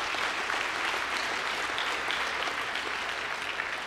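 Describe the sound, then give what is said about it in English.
A church audience applauds steadily, a dense wash of many hands clapping at an even, fairly loud level for several seconds with no voices standing out. “Yeah, you can clap. That's worth it.”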